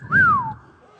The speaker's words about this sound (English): We were just whistling at the angels.